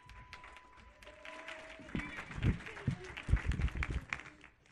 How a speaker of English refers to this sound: Wow, let's give all our performers another huge round of applause.